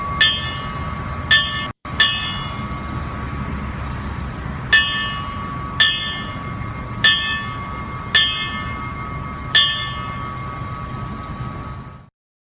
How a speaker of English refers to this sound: But here's a little bit of the bells that always gives me chills on every 9/11 anniversary.